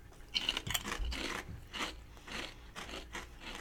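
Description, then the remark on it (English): Thick Kettle Brand apple cider vinegar potato chips, their regular chips, being crunched, a string of irregular, crackly bursts at moderate loudness with short pauses between bites and no talking. “Kettle's always very crunchy.”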